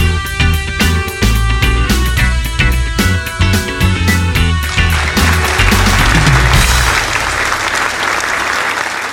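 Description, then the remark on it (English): An audience applauds loudly, a dense, steady wash of many hands clapping that rises out of a rhythmic music track and carries on alone through the final seconds. “That applause goes out to anyone struggling with chronic illness who continues to fight the fight, who continues to look for ways that they can get back into better health.”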